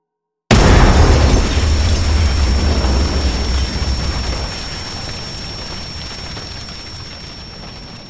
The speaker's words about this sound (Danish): Eksplosionen dræbte Henrik øjeblikkeligt